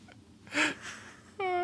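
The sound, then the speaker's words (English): A person around a campfire imitates a bird call in a catcall style: first a short breathy burst, then a steady, clear tonal hoot near the end, moderately loud. “I love how he chooses like a cat call, too. Yeah, like that's a sexy bird.”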